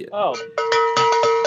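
A loud bell is rung on the Hank Strange Situation show in quick, uneven strikes, about five clangs whose bright metallic tone rings on between hits, after a short wavering sound at the start.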